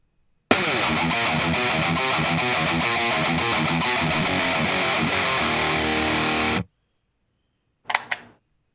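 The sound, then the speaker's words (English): A loud, heavily distorted electric guitar plays a riff for about six seconds, then cuts off abruptly; a brief sharp burst follows a moment later. The guitarist has a fart effect pedal, switched on after playing through the riff once. No one speaks. “This guy's playing guitar, and he's got a pedal known as the fart pedal that he will turn on after playing through the riff one time.”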